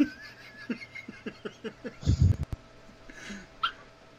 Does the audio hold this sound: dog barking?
yes